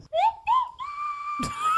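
A slide whistle gives two quick upward swoops, then holds a long, bright note that creeps slowly higher, interrupted by a short noisy burst near the end.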